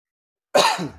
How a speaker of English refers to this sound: And we just start recording and all of a sudden I got a cough.